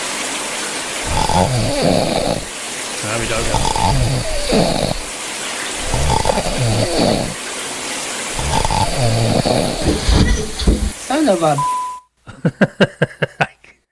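Loud, rhythmic snoring from a person who has fallen asleep in a shower, recorded by a microphone set up in the shower. It repeats about five times over a steady hiss of running shower water, each snore a rough, rattling low grunt, ending with a brief tone and a burst of sharp pulses.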